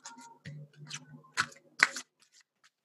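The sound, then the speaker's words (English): A deck of cards being shuffled before drawing a card: a few quick papery riffles and snaps in uneven bursts, the loudest near the end, then a couple of faint taps as the deck settles. “All right, let's have a look at a card for you today. Let's give them a shuffle.”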